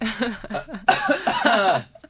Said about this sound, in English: Wait, hold on, I gotta cough.